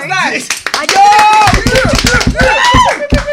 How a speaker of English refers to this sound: How come I didn't get a big clap?